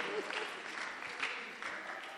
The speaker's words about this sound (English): Artisans, clap your hands for artisans and pray for them.